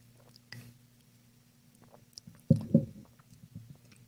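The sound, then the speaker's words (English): Quiet mouth sounds of someone sipping and swallowing water, a short burst of slurping and gulping about midway, over a low steady hum with no talking. “Let's take a sip of water.”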